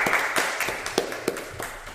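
An audience claps for a couple of seconds, a dense patter of overlapping hand claps with a few sharper, louder individual claps standing out from the steady wash.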